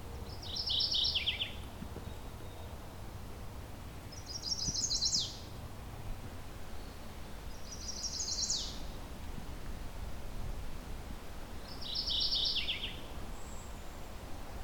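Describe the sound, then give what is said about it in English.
A mourning warbler, gray-hooded with a yellow belly, hidden among ferns and leaves, sings four short, bright, chattering phrases spaced a few seconds apart, clear, over a low steady rumble of background noise. “These morning warblers look almost like a dark-eyed junco, kind of with the gray hood, but then it's got a yellow belly and kind of a greenish back.”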